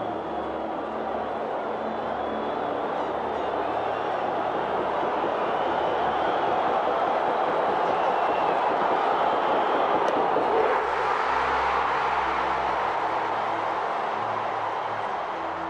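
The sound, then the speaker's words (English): A huge stadium crowd of Phillies fans roars in a steady, thunderous wall of cheering as Tug McGraw strikes out Willie Wilson for the final strike three, holding loud for the whole stretch and shifting in tone about two-thirds of the way through without dying down. “The crowd will tell you what happens.”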